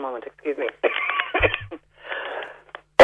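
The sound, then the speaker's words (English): A single sharp, loud cough from a person with a lingering cough that talking makes worse bursts out at the very end, right after a stretch of someone talking. “Sorry, Patricia, I have this cough that everyone seems to have.”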